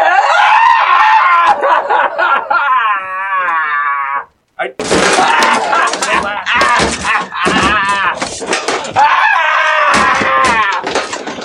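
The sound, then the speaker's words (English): A person sobs and wails loudly in a corner, with long quavering cries broken by choked gasps and a brief pause before the anguished crying surges back. “No, I was sobbing over here in the corner, asking why.”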